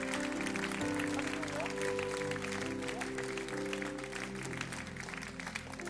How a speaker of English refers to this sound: Let's give these people a massive, massive clap.